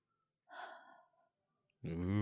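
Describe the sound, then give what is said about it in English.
A person imitates heavy breathing close to the microphone: one loud, breathy exhale lasting under a second. After a brief pause, a voice starts speaking. “But while I'm sitting here, like, I start noticing, like, if somebody were breathing on the microphones, it sounds like.”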